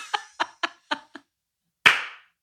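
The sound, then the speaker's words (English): Five quick, sharp hand claps in a steady rhythm, fairly loud, followed after a short pause by one louder, ringing clap. No voices are heard. “Sorry, I didn't mean to clap.”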